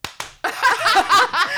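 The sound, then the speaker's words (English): Two sharp, loud hand claps from two people land slightly out of step with each other, imitating off-rhythm clapping at a funeral, then animated voices break in and carry on over the rest. “Wait, you clap and I'll clap.”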